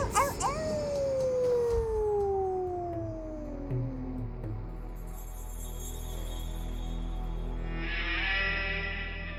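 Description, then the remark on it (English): A single long wolf howl glides slowly downward in pitch for a few seconds, clear, then fades into a low rumbling ambience with a thin high whine near the end. “The wolf begins to circle the boy.”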